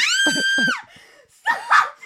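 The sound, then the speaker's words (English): A loud, high-pitched scream holds steady for nearly a second, then drops off; after a brief lull a second, shorter shriek bursts out, rising and wavering. “I just heard that scream. I just couldn't control myself.”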